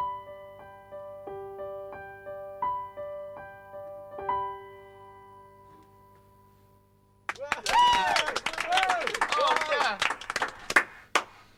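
A few piano notes ring out and fade, then after a short silence an audience of listeners upstairs breaks into steady applause with scattered whoops and cheers that carry on to the end.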